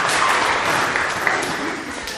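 A brief burst of audience applause for a volunteer who played a blind man, a dense, steady wash of many hands clapping at an even level for a couple of seconds, with some faint murmuring mixed in.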